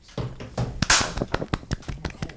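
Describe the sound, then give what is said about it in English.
A series of soft, gentle hand claps, around ten light slaps in an uneven rhythm, with one slightly louder, airier clap near the start; no one speaks. “If I just like gently clap.”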